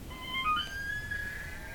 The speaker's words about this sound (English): My last guess is an elk. Da-ding!